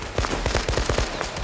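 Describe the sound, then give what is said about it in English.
A rapid volley of police gunfire at fleeing gang members and their Ford V8 getaway car, roughly a dozen sharp shots cracking in quick, fairly even succession, loud, with no voices. “Buck and Blanche run from their door, and the police fire.”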